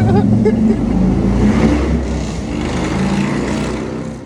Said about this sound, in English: They do that shit every time and never. When are motorcycle people gonna realize no one gives a fuck about their loud ass bikes? He's brave for wearing shorts riding that.